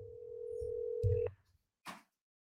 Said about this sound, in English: I'm going to call back the number that just called in. Let's see if we can get them on the line here. It's ringing. Here we go.